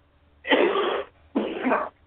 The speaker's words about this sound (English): Sneezing, coughing, must be my allergies. Couldn't be the cigarette.